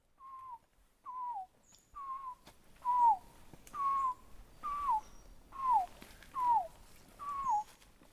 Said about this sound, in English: Quetzal. Quetzal. See it or just hear it? Hear it. We had just caught a glimpse of the resplendent Quetzal.